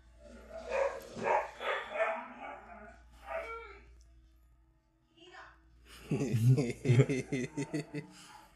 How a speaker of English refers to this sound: If it is, they're gonna think I have like 1,800 dogs. There's only 3 dogs in this house. They just love to talk and run around.